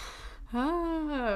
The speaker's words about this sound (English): Stop. We're yawning. Please stop yawning, because every time you do it, I have to.